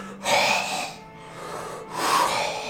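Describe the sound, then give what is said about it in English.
Two loud, breathy gasps, each a rush of air lasting under a second, separated by a brief pause. No speech. “His eyes roll back into position, slowly and bob as blood pours freely out of the neck, and he gasps.”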